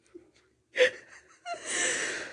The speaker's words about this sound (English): As she's yawning, that's when I ask her questions.